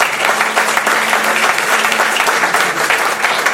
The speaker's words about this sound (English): Just give him a round of applause.